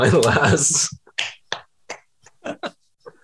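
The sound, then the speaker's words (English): A brief burst of voice gives way to a handful of sparse, uneven hand claps, about seven sharp slaps spaced irregularly, fading slightly toward the end. “Please clap.”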